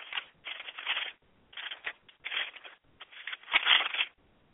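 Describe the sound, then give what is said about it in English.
Pages of a book being turned while looking for a passage to read, a series of soft papery rustles and flips in quick succession, fairly quiet, with no voices. “And I'm turning pages to get to it.”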